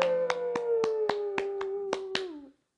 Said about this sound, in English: I mean, what a legend. Can we give this guy a round of applause? Woo!